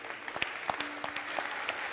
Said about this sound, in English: Put your hands together. Put your hands together. Oh, are you clapping?